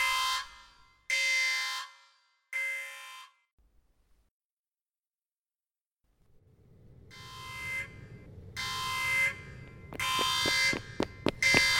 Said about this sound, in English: That, Captain, is the manifestation alarm. The portal's just spat something out.